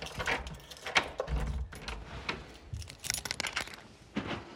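Metallic jangling and clicking as keys rattle and turn in the lock of the front door of number 15, a run of bright, irregular clinks over a few seconds with no talking.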